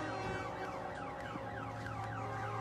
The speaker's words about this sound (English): I'm not sure how sensitive our microphone is, but I'm gonna kind of point it towards, but it was this constant truck and train type horn. It was very relaxing.